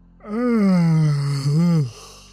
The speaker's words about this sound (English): Making me yawn. Sorry. It's been a long day.